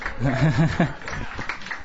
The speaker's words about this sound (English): He's straight over there. Can give him a round of applause if you guys want.